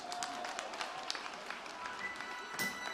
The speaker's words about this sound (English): You can clap hands for Jesus.